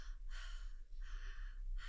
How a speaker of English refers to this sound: And that's where the conscious connected breathing comes in. So I'll do it through my mouth so you can hear me. So it's almost like a